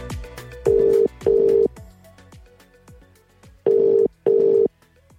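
A telephone ringing tone as a surprise phone call is placed, sounding in two paired bursts: two short rings, a pause, then two more. It is fairly loud over a faint, busy background, with no one speaking.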